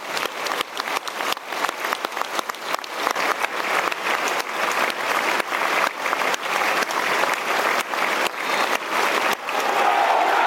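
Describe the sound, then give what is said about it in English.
A large Millwall stadium crowd claps continuously and steadily in a minute's applause for Jules Cohen, one of the 1966 World Cup winners, a dense, loud wash of applause with sharp individual claps standing out, sustained without pause. “A minute's applause for Jules Cohen, one of the 1966 World Cup winners.”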